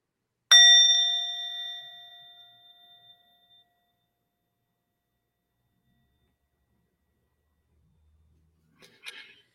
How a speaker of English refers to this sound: And I'll start with the bell just to orient our thoughts.